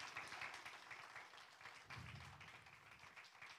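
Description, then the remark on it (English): A room full of people applauding as a hand clap of appreciation, a dense, steady patter of many hands clapping at once that holds for a few seconds without voices. “And I think we ought to just give them a little hand clap of appreciation.”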